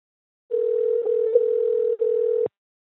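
A steady telephone dial tone of an outgoing call hums at one low-mid pitch for about two seconds, broken by a brief dropout and a couple of faint clicks, then cuts off abruptly.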